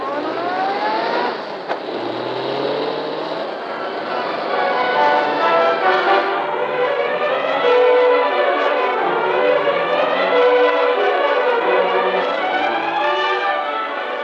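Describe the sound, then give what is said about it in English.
A police car siren wails steadily for the whole stretch as the police car follows the Hornet's car, its pitch rising and falling in long sweeps over the low rumble of a moving car engine, loud. “Spike hears that siren.”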